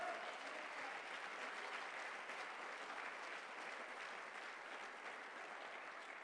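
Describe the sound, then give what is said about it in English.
A church audience claps steadily throughout during a morning service, a dense, continuous wash of many hands with no pauses and no clear voices above it. “It's in this church, and you're going to clap your hands this morning.”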